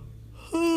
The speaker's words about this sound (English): I'm sorry for yawning. I had a lot of sleep this morning, and I just love sleeping.